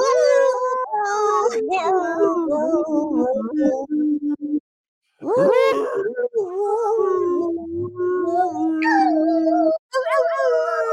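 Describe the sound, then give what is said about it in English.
Several puppies howl together as a birthday song in a long, wavering chorus with rising and falling pitch, almost like singing, pausing briefly midway before the loud howls resume. “They're going to be singing a happy birthday to Rennie in chat.”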